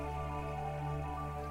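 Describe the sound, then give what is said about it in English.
A sound effect of rubies and sapphires raining down from clouds of corundum on another planet, a dense, steady shimmer of tiny pattering drops over sustained humming tones. It is continuous and fairly loud for the full moment, with no voices. “When these clouds move across the surface of the planet, the whole thing glimmers across my photoreceptors as it rains rubies and sapphires.”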